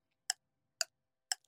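A quiz countdown clock with 15 seconds on it ticks three times at an even pace, each tick a sharp, bright click, with a faint extra tick at the very end and no talking.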